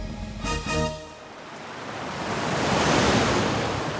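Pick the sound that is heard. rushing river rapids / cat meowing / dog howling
rushing river rapids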